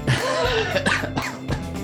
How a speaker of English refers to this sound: Oh, I've got terrible hay fever, so I can cough around.